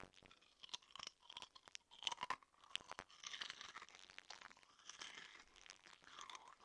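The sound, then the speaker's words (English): Loud crunching as someone chews crisp ridged potato chips, with sharp irregular crackles and bites packed densely throughout, and no talking. “These bad boys are so crunchy.”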